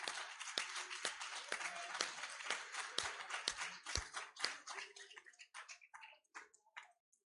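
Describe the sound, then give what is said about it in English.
An audience claps in praise, a dense, steady wash of many hands that thins out toward the end into a few scattered, sharper claps before stopping. No one speaks. “Come on, let's give him a hand clap of praise.”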